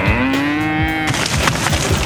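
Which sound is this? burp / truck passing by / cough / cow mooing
cow mooing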